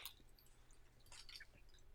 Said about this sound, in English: Twizzlers do require chewing, yes. I'm so sorry, audio listeners. I like the Twizzler bites for this exact reason.